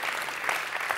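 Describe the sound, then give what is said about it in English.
An audience claps steadily for about a second, a dense, even wash of many hands with no voices standing out. “You guys are clapping today.”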